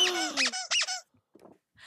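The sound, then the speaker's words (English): A giant furry pink bird hand puppet makes high, harmonic squeaks in quick succession, several loud squeals with rising and falling pitch, then a pause and a softer, rustly squeak trailing off. No one speaks. “Winnie can hear the squeaking through my headphones”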